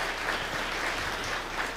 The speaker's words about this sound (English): Would you join with me in giving Murphy Robinson and his entire team of General Service a round of applause?